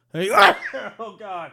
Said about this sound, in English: Hang on. Easy. Got attacked by a sneeze.